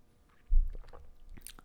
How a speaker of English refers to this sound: Okay, I'm going to just take a sip of a little coffee here.